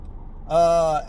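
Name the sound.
car interior ambience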